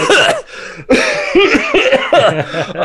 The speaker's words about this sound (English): No, I just have a cough. I have a thing in my throat.